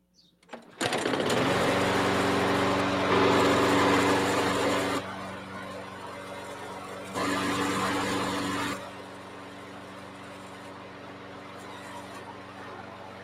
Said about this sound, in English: I haven't pushed a lawnmower in so long. It was awesome.